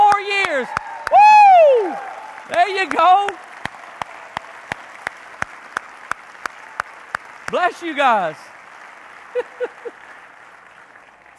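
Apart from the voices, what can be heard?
audience applause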